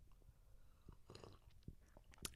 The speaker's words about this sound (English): It's really nice. Yeah, it is nice. Let's all have a sip.